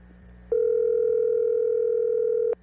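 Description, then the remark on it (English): A single steady electronic telephone ringing tone of an outgoing phone call sounds clearly for about two seconds, switching on and off abruptly over a faint low background hum, with no one talking. “It's ringing.”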